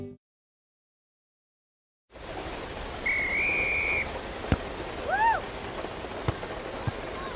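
After a brief silence, steady rain hisses continuously at moderate volume, with a long whistle and a shorter rising whistle sounding over it.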